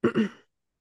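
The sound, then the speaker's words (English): A quick two-part throat clearing by a person who is sick and phlegmy, low and rough, with two closely spaced raspy bursts lasting under half a second and followed by silence. “Oh, that's going to be annoying, clearing my throat constantly.”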